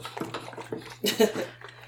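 Film developer being poured into a Stearman press tank, a splashing gurgle in short uneven bursts that peaks midway, over a low steady hum.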